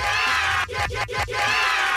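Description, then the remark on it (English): A loud crowd roars and cheers, and in the middle the cheer is chopped into a quick stuttering rhythm of three or four repeated bursts before the full roar returns. “The crowd is remixed.”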